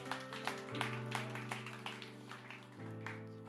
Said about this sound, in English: It's a little golf clap, but come on.